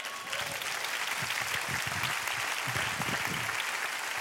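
Sustained audience applause fills the whole stretch, a dense steady wash of many hands clapping at once, fairly loud, with no talking over it.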